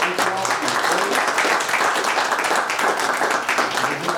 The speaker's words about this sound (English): I'm going to ask our veterans if you have any arms, was any armed services, if you don't mind, men and women, if you don't mind, if you're standing at this time. Amen. Amen. Thank you. Amen. I'm just going to give them a round of applause.